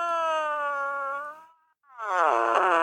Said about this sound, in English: We have the fart machine.